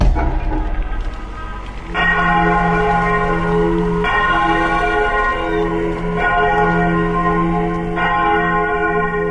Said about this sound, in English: It's a loud sound of a bell for 10 seconds, and within 60 feet, hopefully he can hear that shit, I guess.